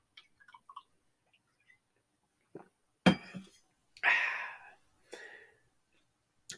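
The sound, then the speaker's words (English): Someone takes a swig of water: faint clinks of a container, then a gulping swallow and a breathy exhale afterward, with short quiet gaps between the sounds. “I guess that medication is water, and I'm going to take a swig of that now.”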